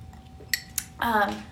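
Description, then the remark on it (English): Wine glasses holding Trader Joe's sparkling lime water clink together twice in quick succession in a toast, with bright ringing chimes, followed by a voice speaking or humming over a low background hum. “My mom says she loves to hear like when we clink our wine glasses.”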